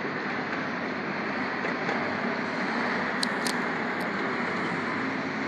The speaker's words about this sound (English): You folks can hear the rush hour traffic going by, and people are getting off work and changing shifts and going to work and shopping and enjoying a nice breezy Victoria sunny winter day afternoon.